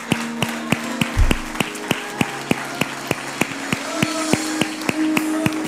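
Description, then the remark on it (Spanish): A church audience claps in steady unison after a Spanish-language prayer, applauding God, roughly twenty sharp, evenly spaced claps at a brisk pace over a faint sustained musical drone, with no talking. “Un aplauso al que vive.”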